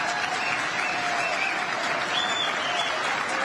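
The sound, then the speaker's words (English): A large audience applauds steadily for several seconds after a speaker's remark about assault weapons and high-capacity magazines, a dense, even wash of clapping with a few faint whoops rising above it and no one speaking. “So you got the barking, clapping seals going along with that.”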